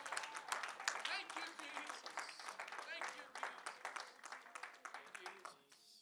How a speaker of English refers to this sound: And why don't you give a great hand clap unto the Lord tonight? Hallelujah, hallelujah, hallelujah.